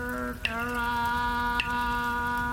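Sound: falling rain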